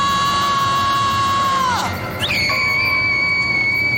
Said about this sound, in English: All right, you can hear it right there. The counselor that went to check on Michael runs off screaming after what she sees that has happened to him.